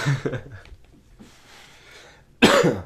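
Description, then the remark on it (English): Someone coughs, a short hacking burst near the start, then a quiet breathy pause before a second, louder, harsher cough erupts at the end. “Yeah, I got a cough.”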